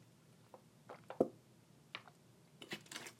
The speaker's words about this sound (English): Oh my god, my voice is being so bad for me right now. Oh, I need a drink of water.